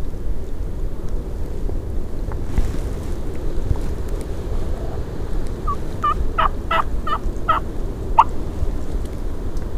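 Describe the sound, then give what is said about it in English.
A wild turkey gobbles in a field in a quick rattling burst of several sharp notes, over a steady low rumble of wind noise, with no voices. “There he is in the field.”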